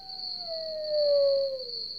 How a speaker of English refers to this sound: We've added some sounds. Mm-hmm. We're listening to them right now. Maybe a lone coyote. Sure.